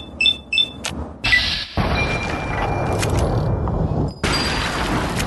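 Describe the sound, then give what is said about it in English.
Video game lever-action rifle shots from Lincoln's Repeater, which carries 15 shots: two quick cracks with a metallic ring, then heavier booming blasts that trail into a sustained rumbling roar, with another loud shot near the end. “It fires quickly for lever action.”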